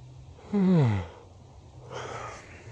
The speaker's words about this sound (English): But also, I've just been napping, so I'm still yawning. Took a nap in the midday.